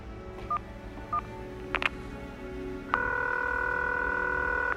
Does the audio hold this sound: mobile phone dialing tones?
yes